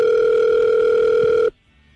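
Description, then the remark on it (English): A telephone ringback tone on an outgoing call: a single steady, buzzy tone holds for about a second and a half, then cuts off abruptly into near silence. “Oh, it's ringing.”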